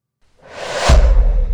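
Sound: whoosh sound effect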